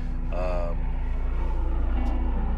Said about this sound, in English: I got the ghetto bird on me. Oh, is that actually an Arizona News helicopter? Yeah, fly over this trash pile.